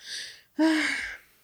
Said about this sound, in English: I didn't moan, I yawned.